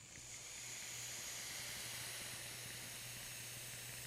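A steady sizzling hiss of a vape coil firing in an RDA (rebuildable dripping atomizer) during a hit, with a fine crackle running through it and a faint low hum underneath, lasting a few seconds without any talking.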